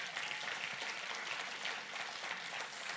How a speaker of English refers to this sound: So let's give the Lord a hand clap for that. Amen.